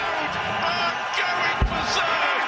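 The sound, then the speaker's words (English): A loud crowd at a darts match cheers in a steady, roaring wash of voices after a double 12, with a sharp low thud cutting through partway in. “Crowd's going crazy.”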